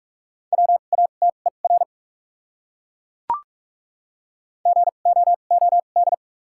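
Morse code tones sent at 45 words per minute with 2x character spacing, from a set of the top 200 words: rapid bursts of a steady mid-pitched beep form two words separated by a long pause, with a single faint click in between.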